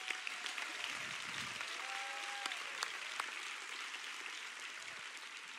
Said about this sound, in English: So let's give all these people a big round of applause.